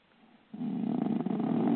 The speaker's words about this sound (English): Somebody's snoring out there.